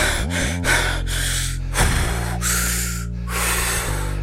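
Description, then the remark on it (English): A voice imitates heavy, ragged gasping breaths, several loud rasping inhales and exhales in quick succession, with no other talk. “And you hear him breathing.”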